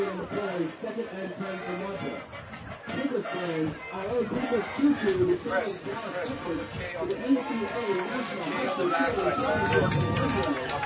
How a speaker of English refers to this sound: Crowd coming alive here. Yeah, this is big. This is big for this defense of Pencrest.